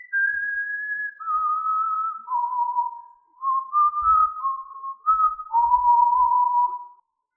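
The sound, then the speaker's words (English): Someone whistles a slow melody alone, clear, the pure tone stepping between held notes over about seven seconds with brief breaths between phrases. “Can I see who's whistling?”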